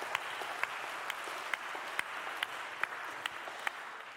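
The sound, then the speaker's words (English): A crowd applauds steadily in response to a message about the resurrection, a dense wash of many hands clapping together, with sharper individual claps popping out at a loose, roughly regular pace throughout. No one speaks. “Yeah, we could clap about that.”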